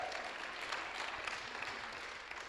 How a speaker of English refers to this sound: Come on, clap. That was good.